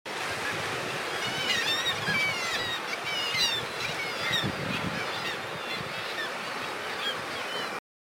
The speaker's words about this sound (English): down here on the cliffs, there's a colony of kittiwakes with youngsters, most of them nearly fully grown with that lovely black stripe down the back of their wings. And yeah, it's been fantastic. And here's a bit of sound of those lovely kittiwakes.